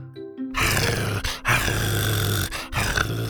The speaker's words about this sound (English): growled playfully and peeked out from behind the plant before trying to hide his big head again.